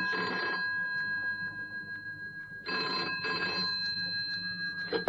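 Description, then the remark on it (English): A telephone bell rings in room 4 in bursts, a brief ring at the start and then a double ring after a pause, loud and metallic with a steady hum beneath and no voices. “You asked me to ring you.”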